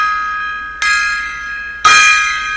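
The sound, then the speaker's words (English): A gong is struck twice, about a second apart, each hit blooming into a loud, shimmering metallic ring that sustains and overlaps the previous tone. No voices. “Random gong solos here.”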